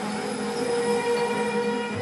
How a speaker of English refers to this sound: All right, we're at the train station. As you can hear from the steam. The squeaky wheel. Love this train.